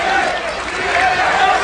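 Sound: wrestling crowd cheering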